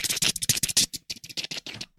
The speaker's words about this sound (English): We better make a selection quick. Okay. I'm going to type in the keyboard.